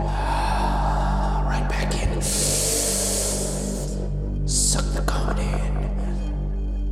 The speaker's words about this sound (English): Breathe in. Open yourself up to the comedy. Breathe out a bit. Back in. More in. Keep breathing in. Harder breathing in. And now.